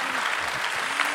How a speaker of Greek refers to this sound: Δώστε ένα ωραίο χειροκρότημα για ωραίους καλλιτέχνες.